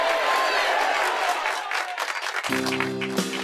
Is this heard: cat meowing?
no